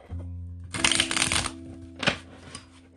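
household object, tarot cards being shuffled

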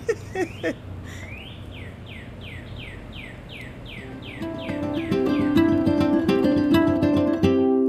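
bird, birds chirping and singing

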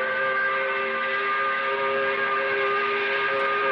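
signal or alarm, five o'clock whistle blowing

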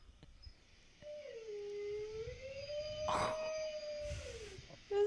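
animal, dog howling

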